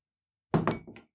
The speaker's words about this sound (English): Let's roll the dice. Let's roll.